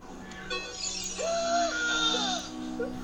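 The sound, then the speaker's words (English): A recorded scream plays on its own, a strained, high wavering cry with a bleating edge that bends up and down in pitch and holds for a couple of seconds. “So at this moment, folks, here is the scream in all of its primordial glory.”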